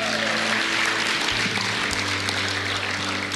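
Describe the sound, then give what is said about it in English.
A large crowd gives Jesus a round of applause after a closing prayer, clapping steadily and loudly throughout in a dense wash, while sustained low keyboard or organ notes hold and shift underneath. “Come on, can we give Jesus a round of applause?”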